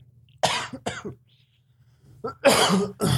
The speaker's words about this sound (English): Coughing instantly.